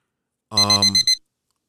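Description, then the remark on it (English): A short burst of rapid electronic timer alarm beeps, about five quick pulses in under a second, loud with no talking. “I need to reset my timer. My time is way off.”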